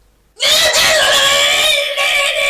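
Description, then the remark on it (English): A person lets out a loud, sustained, high-pitched scream imitating a dog-man, starting abruptly and holding steady for about two seconds with a strained, wavering tone. “Is that what noise you'd make if you were a man dog?”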